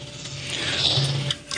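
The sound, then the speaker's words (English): A single sharp cough bursts out at the end, preceded by a brief low, voiced throat sound; no words are spoken. “I had to cough there for a second.”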